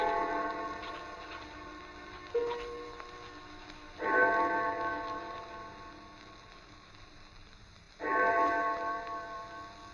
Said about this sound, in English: I had no idea how long I worked until I heard the clock of St. Jude's in the distance. It was 4 o'clock, and I had started just after breakfast.